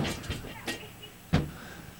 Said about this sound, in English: Hello? Hello? I fell off the chair. I'm on the floor. My legs are numb, I'm on the floor.